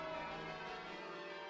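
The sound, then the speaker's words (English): Bells ring in a steady, overlapping wash of bright metallic tones that hum continuously with no clear gaps between strikes, with no voices present. “The bells ring on and on, but it's time that you were leaving.”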